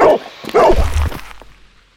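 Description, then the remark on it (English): A large black dog growls and snarls aggressively in two loud bursts over a deep low rumble as it charges, at night on a wet old Spanish cobblestone street in light drizzle, then the sound fades away quickly. No one speaks. “A low growl. In front of me, a large, black dog. It charges at me and...”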